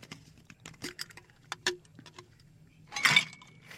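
Ice cubes drop into a glass of Sazerac cocktail: a scatter of light clicks and taps, then a louder clattering clink with a brief glassy ring near the end.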